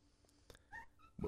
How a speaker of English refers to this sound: Is that Lou? Yeah, that's Lou. That cat is making the weirdest noise. I know. I thought it was like a little dog barking. Those are the noises that he makes. I know, that sounds like a little dog barking.